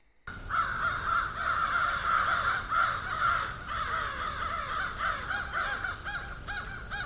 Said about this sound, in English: So this is the original file that I downloaded. Sounds good. But didn't have quite enough punch for me. So with Audacity, I was able to add multiple layers to make it sound like there were a lot of crows.